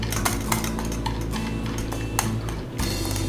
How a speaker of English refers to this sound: would you carefully whisk the sugar into the egg yolks and whisk it all up? Very careful. I'll hold the bottom for you so it doesn't move. Just keep whisking it and slowly pour it in. It's going to get really thick.